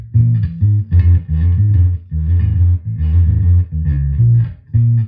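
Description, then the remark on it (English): A clean, unaffected bass guitar with the effect turned off plays a short riff of deep, round notes in repeated phrases separated by brief pauses, fairly loud with no one talking. “If you were to turn it off, what does it sound like? This is what clean sounds like.”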